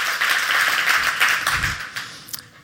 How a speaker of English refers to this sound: You can clap for that. That's a good time to clap. You can clap for that.